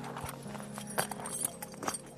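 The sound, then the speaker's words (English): A horse's hooves clip-clop at a slow, uneven walking pace as it is prepared for a family walk, a handful of crisp strikes, with a low steady hum in the background and no voices. “She is preparing her horse for the family walk.”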